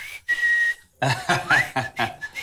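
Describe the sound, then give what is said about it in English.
A person whistles a short, steady high note, then after a pause gives a quick rising whistle amid breathy, choppy vocal noises, fairly loud. “are you whistling at me? I'm not whistling at all.”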